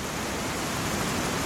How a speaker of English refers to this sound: Flatwater gently pushed the team towards the gates of the canyon. And then the horizon line appeared. The hum of the rapid grew to a roar.